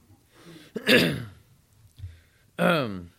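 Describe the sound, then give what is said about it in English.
A raspy throat clearing followed by a cough, two separate bursts with a short pause between them, the second one voiced and gravelly. “Whenever I cough, he always asks me if I'm okay.”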